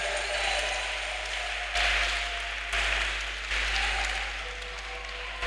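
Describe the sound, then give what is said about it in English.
A crowd of people claps steadily for several seconds as a clap offering to the Lord for the Holy Spirit, a dense, loud wash of applause that swells in waves, with faint voices and a low hum beneath it. “Put your hands together for the Holy Give Spirit. Give the Lord a clap offering.”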